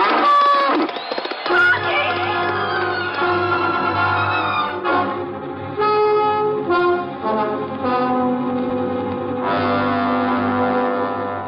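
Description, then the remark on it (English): A bull of about 2,000 pounds charging across an arena bellows loudly in long, rough, rumbling calls that continue almost without pause for about ten seconds over a deep, steady low drone. “I'm right smack in the middle of the arena, and coming my way fast is about 2,000 pounds of cow with a built-in pitchfork between the ears.”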